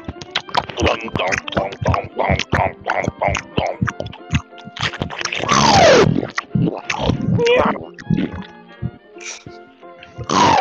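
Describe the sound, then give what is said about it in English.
Loud, wet gum chewing: rapid, irregular smacks, clicks and squelches run throughout, with a brief falling squeak partway through and no clear words. “Today we'll be chewing some gum.”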